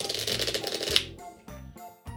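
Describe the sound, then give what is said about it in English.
A quick riffle shuffle of playing cards, a dense burst of crisp fluttering clicks for about a second, followed by a few softer taps and card handling sounds. “All right, so here comes that good shuffle.”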